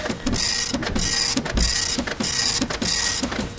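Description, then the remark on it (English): A printer runs steadily, finishing a print job, with a repetitive mechanical whir and regular clicks as the print head sweeps back and forth. No voices are heard. “Finishing up off the printer right now.”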